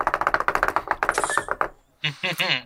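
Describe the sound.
A rapid, steady clatter of small knocks from a shaking leg rattling an uneven chair runs for over a second before stopping; a voice then speaks briefly.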